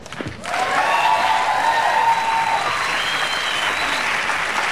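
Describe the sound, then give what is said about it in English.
A sitcom studio audience bursts into sustained entrance applause for Helen Hunt, a dense steady wash of clapping that swells in after a brief start and holds loud for several seconds, with faint cheering tones riding on top. “That's entrance applause for Helen Hunt.”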